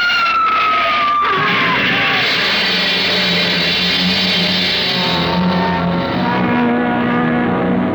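A car's tires screech in a falling squeal as it skids about 20 feet, then a sharp impact hits as it slams into the back of a big black hearse pulling out of Gowanda Cemetery. A loud, dense mechanical roar with steady droning tones continues for several seconds. No one speaks.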